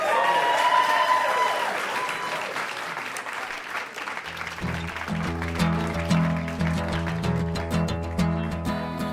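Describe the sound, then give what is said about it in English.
A game show studio audience applauds the contestants steadily, with a few whistles at the start; about halfway through, music enters and plays on beneath the continuing clapping. “Give them a hand.”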